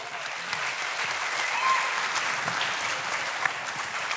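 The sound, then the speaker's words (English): An audience at a live event applauds the host's business partner steadily for about four seconds, a dense, even patter of many hands clapping at a fairly loud, constant level with no voices standing out. “I don't clap for him, but I'm glad.”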